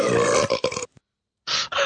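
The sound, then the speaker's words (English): Two loud, deliberate burps made by two people after swallowing air, with a short silent gap between them: the first long and croaky, the second shorter and rougher. No talking. “Can't believe that we sat there for probably 5 minutes swallowing air to do all of those burps.”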